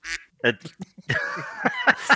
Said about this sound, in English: We've got a special guest, is this duck.